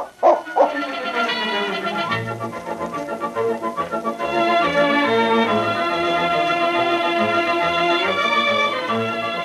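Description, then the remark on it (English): A dog gives a couple of quick, sharp barks right at the start, then a swell of sustained music takes over and plays on to the end with no further barking. “You were a good dog.”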